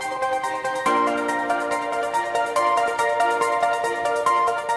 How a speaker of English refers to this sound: Wait, we got to fire off the news. I keep forgetting. We got the awesome jingle. Wait for it. Ready?